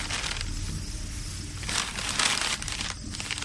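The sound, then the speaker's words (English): A large square of white paper crinkles and rustles continuously for a few seconds, fairly loud, with bursts of brighter crackling in the middle and near the end. “He reached back into his impossible satchel and produced a large square of gleaming white paper.”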